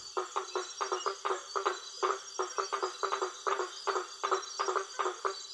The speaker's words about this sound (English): Anyway, this was recorded on a tributary off the Amazon. There was an inlet, and it was filled with water lilies and frogs, so we were able to just sort of silently drift in among them, and they were all around us.